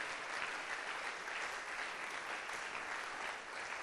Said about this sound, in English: Clap your hands and shout, I receive it.